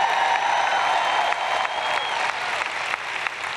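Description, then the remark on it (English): Audience clapping fills the whole stretch, a dense, steady wash of many hands with no voices on top, holding at a fairly even loudness from start to finish. “I guess I'll say it till I can get a better clap than that.”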